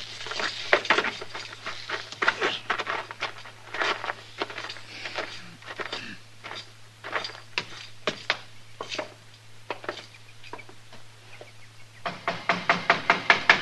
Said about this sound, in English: Don't be banging on the door. I seen you coming.